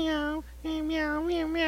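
A cat meows in two long, drawn-out cries separated by a brief pause, loud and tonal with a wavering pitch, with no other sounds around it.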